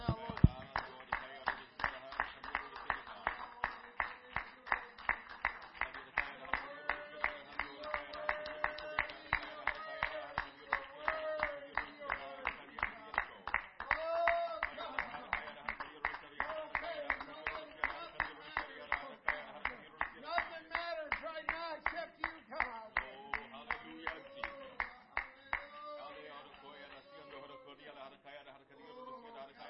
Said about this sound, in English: Can we just clap our hands to the Lord